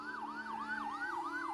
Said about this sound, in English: Suddenly, they all heard sirens.